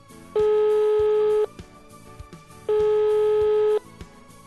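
A telephone ringback tone on an outgoing call from Seattle, Washington to a random person in Sweden sounds twice, each a steady electronic buzz lasting about a second with a similar pause between, clear and fairly loud over a faint, busy background.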